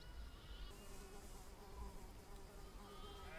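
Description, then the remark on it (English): A steady electric buzzing drones on without a break, thin and fairly quiet, with a faint rise in intensity toward the end and no voices present. “And as the electric buzzing heightened”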